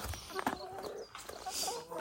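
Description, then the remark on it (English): Chickens cluck softly in a few short, uneven bursts at an allotment as two eggs are collected from their nesting box, set against a quiet outdoor background with faint rustling. “Well done, chickens.”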